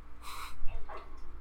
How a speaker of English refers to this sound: Oh no. The doggy is really cute. Its little stubby legs are adorable. The dog was barking at her earlier.